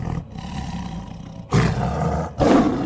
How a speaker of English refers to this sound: In a sudden flurry, the brush in front of them swished violently aside as the face of a giant white tiger peered through. Rows of sharpened teeth glinting dully in the night as a low growl echoed from its chest.